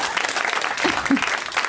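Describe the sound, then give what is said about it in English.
A crowd claps steadily, a dense, even patter of many hands throughout, with a few brief voices rising faintly beneath the applause. “Just even clapping with agreement would be fine.”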